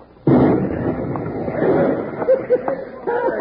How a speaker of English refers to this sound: That explosion might draw him away from the back door.